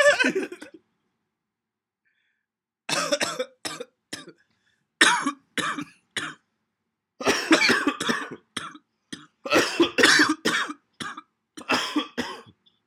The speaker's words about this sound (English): Nothing like a cough between sisters.